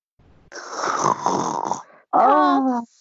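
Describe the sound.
A person makes an exaggerated mock snore down the phone, a long rasping inhale followed by a voiced, whistling exhale, loud, with no words spoken.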